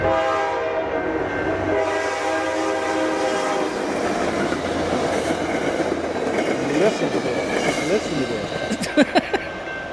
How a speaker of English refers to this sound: Listen to this. Are you living on a train track? I think it might be train time. Oh, it's train time.